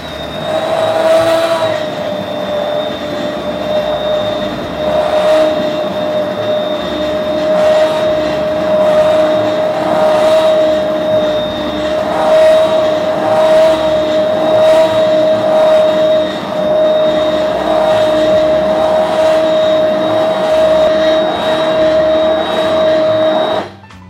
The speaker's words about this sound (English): And you're gonna take a hand blender like this. This is really nifty. And we're just gonna blend it up.